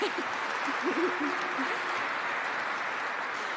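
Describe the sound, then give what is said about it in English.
Steady audience applause from a crowd of military families, a dense wash of clapping that holds at an even level throughout, with a brief voice or two murmuring underneath in the first second or so. “I thought that might get an applause.”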